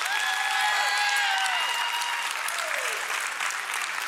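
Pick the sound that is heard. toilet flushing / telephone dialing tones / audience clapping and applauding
audience clapping and applauding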